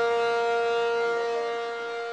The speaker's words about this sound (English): Emergency sirens roar at the Chevron refinery in Richmond, while a fire at the refinery sends flames and a plume of thick black smoke into the sky. The alarm means shelter in place.